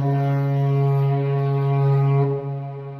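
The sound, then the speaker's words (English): A loud, sustained spoiler horn blast sounds as a warning effect: one steady, low, brassy tone lasting about three seconds, rich in buzzing overtones, dipping slightly before it fades. No voices. “So we're going to sound the spoiler horn.”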